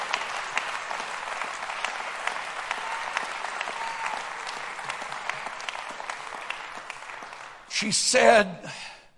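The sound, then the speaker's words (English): A crowd claps hands to praise the Lord in a dense, steady patter for several seconds, then a loud voice cries out briefly over the clapping near the end. “Come on, clap your hands to the Lord and praise him.”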